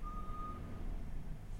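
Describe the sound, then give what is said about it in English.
A truck's reversing beeper sounds outside, one steady high-pitched tone over a continuous low engine rumble, fairly faint. “Okay, sorry, there's a truck outside, and I got worried that it was picking up on the mic.”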